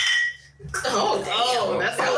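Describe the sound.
Glasses clink together in a toast, a bright ringing tap that hangs briefly before people start talking and chuckling.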